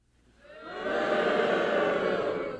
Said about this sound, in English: How many of you are dog lovers out there? Can we actually, just for audio, get a bunch of you booing?